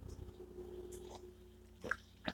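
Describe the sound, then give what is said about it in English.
Two quick slurping sips of hot coffee, the first sips of the day, come near the end, fairly soft, over a faint steady background hum with no talking. “Those were literally my first sips of the day, so I love that zing into the system.”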